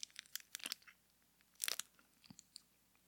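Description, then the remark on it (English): Loud, sharp crunches of a small hard candy, like the head of a Dum-Dum lollipop, being bitten and chewed, with a cluster of cracking bursts early, a dense crunch around the middle, then a few scattered smaller snaps. “This one's like a little, just the head of a dum-dum.”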